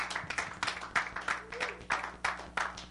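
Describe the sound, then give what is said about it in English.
A group claps hands in praise, a steady rhythmic beat of roughly three claps per second, moderately loud and sustained, with a faint low hum underneath. “Look at a hand clap of praise.”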